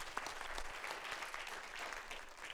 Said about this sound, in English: Would you give these three a hand clap? Thank y'all.